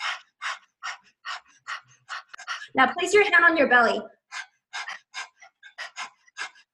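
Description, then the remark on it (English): A person pants rhythmically like a dog with the tongue out, quick breaths in a steady pulse, as a breath of fire breathing exercise, pausing briefly while someone speaks a short instruction before the panting resumes. “So stick your tongue out like a dog and begin panting, like.”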